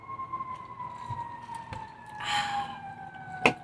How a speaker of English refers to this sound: Is that a siren? Shot. Take a drink! Fire engine.